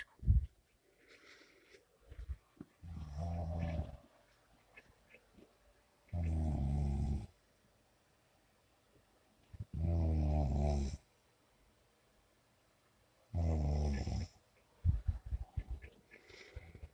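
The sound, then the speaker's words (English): A sleeping man snores loudly, four long rasping breaths spaced a few seconds apart with quiet pauses between, over a faint steady hum of a fan; recorded on a phone. “So that's him snoring.”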